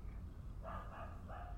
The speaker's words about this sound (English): Oh, he's outside barking at something. Yeah, because he barks outside all the time.